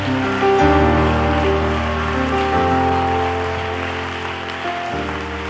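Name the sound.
audience clapping hands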